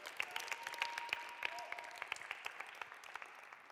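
An audience breaks into sustained applause, a dense wash of many hands clapping steadily with sharp individual claps popping out, and a faint tonal whistle sounding briefly through it.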